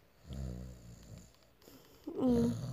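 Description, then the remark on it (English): A voice imitates soft snoring, the way someone normally sleeps, with two breathy, rumbling snore sounds, the second louder and more throaty, with no spoken words. “Oh, snoring?”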